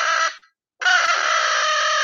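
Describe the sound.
An imitated crow caw, made by fluttering the uvula while blasting air through it, loud and raspy with a fluttering rattle: one short call, a brief pause, then a longer sustained caw, with no talking.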